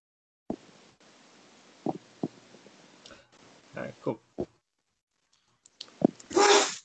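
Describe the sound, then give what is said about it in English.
One sharp, loud sneeze bursts out near the end, after a stretch of scattered clicks, taps and faint muffled voices in the background. “Bless you.”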